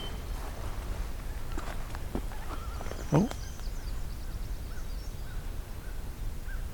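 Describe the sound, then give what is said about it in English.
A common loon gives a brief, wavering call that rises in pitch, heard once over steady outdoor background noise, moderately loud against a quiet setting. “Common loon.”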